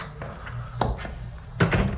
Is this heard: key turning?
yes